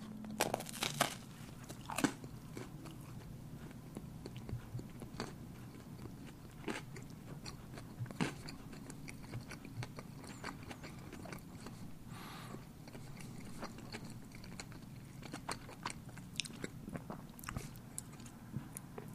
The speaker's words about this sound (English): I have it right here in front of me. I'm going to take a bite of the Fruit Loops donut.